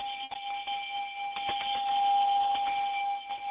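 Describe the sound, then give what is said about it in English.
A bell rings continuously for a few seconds on a radio call-in show, rung to greet a first-time caller: a steady high-pitched tone with a clattering, buzzy edge, fairly loud and with no voices over it. “You get the bell for being a first-time caller.”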